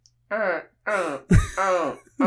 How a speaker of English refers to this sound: the terrifying noise made by the raptors in Jurassic Park were sourced from recordings of tortoises mating